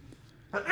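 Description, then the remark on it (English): A quiet moment breaks into a single sudden, loud, breathy sneeze that bursts out near the end. “I'm going to sneeze.”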